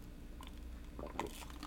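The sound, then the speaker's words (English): Someone sips ice-cold water from a glass, with soft wet mouth sounds and a brief gulping swallow in the middle. Quiet and short, with no talking. “And so I got this glass of water. Now I'm going to take a drink.”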